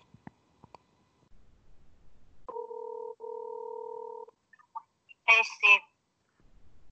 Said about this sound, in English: Oh, okay, here we go. All right, guys, here comes the call. Here we go. Is it ringing? Can you hear it? Oh, there it goes.